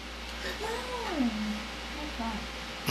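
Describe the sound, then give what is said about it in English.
A cat lets out a drawn-out meow that rises and then slides down in pitch, followed by a shorter, softer chirp, over a steady hiss of room noise. “She's not a raccoon, though. She's a cat.”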